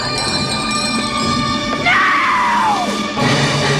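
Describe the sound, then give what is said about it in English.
A woman lets out a single loud, drawn-out scream of horror, her pitch sliding downward as it fades, set against a dense, continuous wash of background sound. “Julie realizes what she has done and screams bloody murder.”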